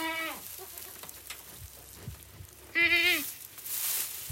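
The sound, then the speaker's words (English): Two loud, wavering goat bleats in a barn, one at the start and another about three seconds later, each a harmonic-rich quavering cry over a steady low hiss with faint scattered sounds between. “In the barn, lots of goats, a few goats, some chickens hang out there during the day.”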